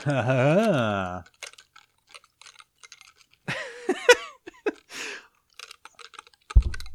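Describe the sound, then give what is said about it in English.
Wet clicking and clattering mouth noises as a pencil is rolled around with the tongue behind the teeth, broken up by muffled, strained humming and grunts. No clear words are spoken. “So, like roll the pencil with your tongue behind your teeth.”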